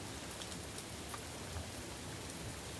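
Heavy storm rain pours down steadily, having just picked up again, a dense, continuous hiss of drops pattering on hard surfaces, with no voices and no pauses in the downpour.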